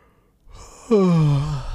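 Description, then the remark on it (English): A single yawn: a breathy inhale swells into a loud voiced groan that slides downward in pitch and trails off, with no talking. “You know, if I'm yawning, that means I'm doing a good job.”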